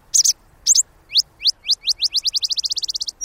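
A Botteri's sparrow sings alone in the desert during the late-summer monsoon rains: a few sputtering introductory chips, then a run of sharp, rising notes that speeds up into a bright, rapid trill.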